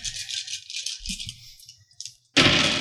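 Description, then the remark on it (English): A handful of five six-sided dice rattle and clatter together in quick, bright bursts, ending in a sudden louder clatter as they tumble out onto a surface. “All right, I've never rolled this many dice before.”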